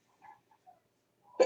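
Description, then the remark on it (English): A sudden, sharp sneeze bursts out at the very end, loud, after a quiet stretch with only a few faint, small sounds. “Bless you.”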